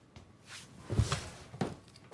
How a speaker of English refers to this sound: Let's open the door in case I barf.